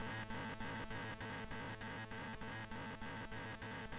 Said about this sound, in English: So that kind of, I think it's radio static. I'll turn it up on there.